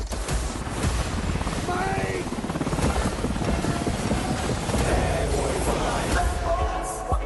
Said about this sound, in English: Where the hell are you getting all these helicopters?